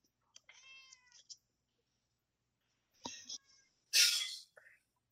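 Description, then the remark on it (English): A pet cat meows, a drawn-out harmonic cry followed a couple of seconds later by a shorter, rougher meow and a breathy hiss-like burst, with quiet pauses between. “I had to reach over and pet my cat.”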